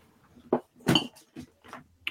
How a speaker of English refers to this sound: My cat just knocked over a whole bunch of stuff.